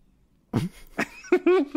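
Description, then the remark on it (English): Two sharp coughs a half-second apart, followed by a few brief voiced, tonal vocal sounds, all fairly loud against an otherwise quiet background. “We promise that we won't cough on the air.”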